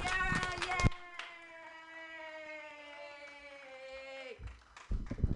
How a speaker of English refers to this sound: So I think we're just gonna all, let's clap and make it super loud